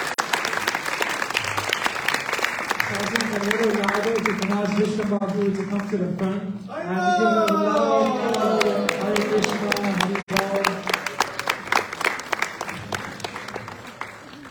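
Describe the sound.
An audience gives a sustained round of applause, a dense, loud clatter of many hands lasting the whole stretch, with some cheering voices rising through the middle before the clapping thins out.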